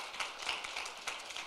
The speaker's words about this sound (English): Yeah, you can applause. Yep.